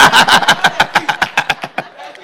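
A voice imitates a car engine cranking as a car is warmed up: a quick run of rhythmic, sputtering pulses that gradually slow and fade, fairly loud, with no other sound around it.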